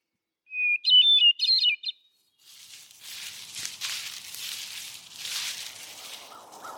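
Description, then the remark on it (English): A downy woodpecker in a tree gives a loud, close, high-pitched burst of rapid chattering notes lasting about a second and a half, followed by steady rustling, breezy background noise, among trees with a little snow still on the path. “We've got a nice little downy woodpecker in the tree near us.”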